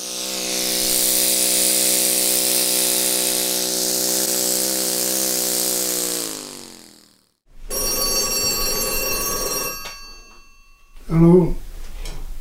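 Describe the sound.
A landline telephone in a kitchen rings loudly in two long bursts with a short pause between them, then a voice briefly speaks at the end.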